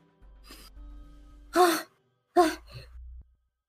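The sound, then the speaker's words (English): Two sharp, breathy gasps of air drawn in quickly, fairly loud, separated by under a second, with a faint low hum and softer breath noise in between. “So it takes a few minutes, but Dolus eventually, as you're going over like the feathers on the top of Lotus's head, there's all of a sudden just a gasp of air coming in.”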